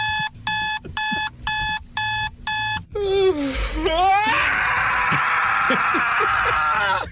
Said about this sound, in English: Your boyfriend, your girlfriend, your spouse, they're laying next to you in the morning. Your alarm goes off.